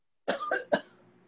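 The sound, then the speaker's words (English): A short fit of three quick, harsh coughs, each burst sharp and breathy, followed by a brief quiet tail with no one speaking. “Was that cough intentional?”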